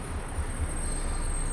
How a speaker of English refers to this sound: Mills applies the brakes, stopping the train at a spot known as Sears Crossing.